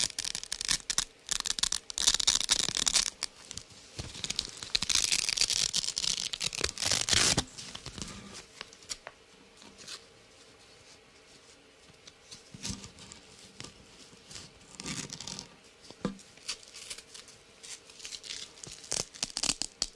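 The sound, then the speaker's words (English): Harsh, ripping rasps of velcro being pulled apart, loud bursts over the first seven seconds, then quieter scattered crackles and short tearing strokes with brief pauses between them. “Velcro can be kind of a gnarly sound, I'll leave it at that.”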